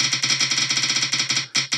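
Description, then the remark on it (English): A rapid, buzzy electronic rattle of repeating pulses, like a cheap 80s toy gun firing, loud and harsh with a brief break near the end before a final burst. “Sounds like a little 80s toy gun.”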